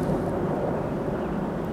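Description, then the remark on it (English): A steady, loud low rumble of an airplane flying low, below the listeners, a dense roar filling the short stretch with no voices and no change in pitch. “Yeah, they sounded really close. My house is up at the top of the hill, and sometimes we can look down on airplanes.”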